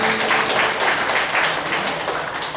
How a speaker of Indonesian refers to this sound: Sekali lagi tepuk tangan buat Tuhan.